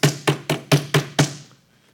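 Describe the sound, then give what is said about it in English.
Six heavy thumps from a fist pounding a wooden pulpit, evenly spaced about a quarter second apart, resonant, each with a short woody ring, then quiet. “Pounding this pulpit.”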